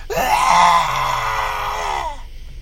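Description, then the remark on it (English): A loud, sustained high-pitched screech by wrestler Ember Moon with a harsh, piercing tone, holding steady for about two seconds before cutting off abruptly, heard on its own with no talking. “Not a huge fan of her screech. That screams something out of Neon Genesis Evangelion.”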